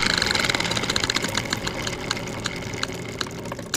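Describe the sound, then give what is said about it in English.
A prize wheel spins with a rapid ratcheting clatter of clicks that gradually spread out as it slows, loud, with no voices. “Take the next spin”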